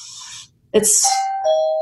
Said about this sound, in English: Is that my doorbell? Is it?